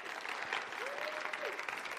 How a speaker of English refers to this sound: Come on, give her a round of applause.